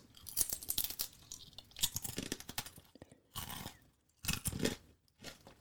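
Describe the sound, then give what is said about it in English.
Chewing of something dense and crunchy, with bursts of crisp crunching separated by short pauses, loud with no talking. “Very crunchy. I wouldn't say it's a potato chip crunch, though. It's something a little more dense.”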